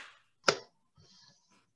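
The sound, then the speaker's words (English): A single sharp hand clap, made to mark an edit point in a recording, rings out loud and crisp with a quick decay, followed by faint low rustling and murmur. “And clap back in.”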